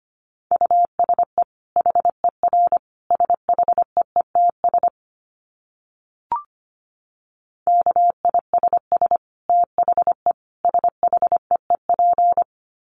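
Morse code tones sent at 25 words per minute beep in quick on-off bursts, a single steady pitch keyed fast and evenly, broken by a short pause with a faint click before the sending resumes. No one speaks.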